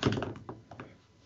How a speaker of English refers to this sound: We're going to have to pause for a second. My mother's walking in the door right now.